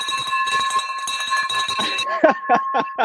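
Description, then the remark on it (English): A bell is rung in celebration, rapidly and repeatedly, its bright sustained tone ringing loud for about two seconds before breaking into a few separate clanging strikes. “So, Errol, we're going to ring the bell for you, brother.”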